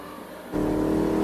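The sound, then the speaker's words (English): A car engine suddenly roars up to a loud, steady rev after a brief quieter moment, sounding aggressive as the vehicle drives fast. No one speaks. “You are liable for any damages to the vehicle, so please stop the car, or at least slow down.”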